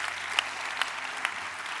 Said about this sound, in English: How many know we're supposed to like all of the words of Christ? Can I get it? That should be a better clap, guys.